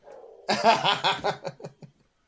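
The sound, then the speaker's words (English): A dog barks excitedly, a rapid burst of yelping barks that tapers into a few shorter, softer yaps, preceded by a low rumbling growl. “My dog is going crazy.”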